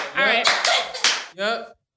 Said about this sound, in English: What are we doing? Clap.